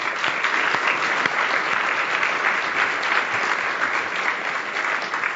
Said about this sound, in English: So a warm round of applause for them, please.